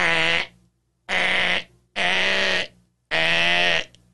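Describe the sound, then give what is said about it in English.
Someone imitates desperate gasping after having the wind knocked out by a football tackle: four loud, strained, croaking breaths in a steady rhythm, each about half a second, hoarse and almost bleat-like. “And all I remember, this hasn't happened to me since I was a teenager, but when I got the wind knocked out of me, this is what all I remember from it.”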